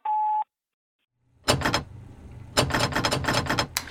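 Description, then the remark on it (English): A short electronic beep, a brief silence, then a stubborn door being forced open with loud rattling, thumping clatter in several bursts, with no voices. “Jesus, this door is becoming a problem.”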